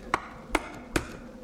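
Three sharp knocks on a door, evenly spaced about half a second apart, each a brief hollow thud with a woody ring, over a quiet low hum.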